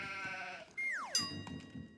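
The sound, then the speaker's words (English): Livestock bleating with no voices: a steady, nasal bleat, then a louder cry that swoops sharply down in pitch before trailing off into a quieter wavering tone. “and there was a plague on the livestock.”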